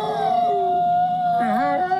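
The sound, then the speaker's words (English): Wolves howling together in long, sustained tones, one voice holding a steady pitch while another dips low and rises again, filling the whole stretch without pause. “And howl number two. Oh, yeah, wolves. 100% wolves.”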